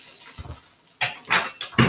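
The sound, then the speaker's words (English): Four bun bottoms sizzle as they toast in a hot pan, a steady crackling hiss that flares into three louder bursts of spitting and clinking, with no voices. “Hear that sizzle.”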